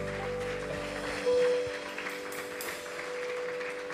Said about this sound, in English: Give the Lord a hand clap of praise this evening.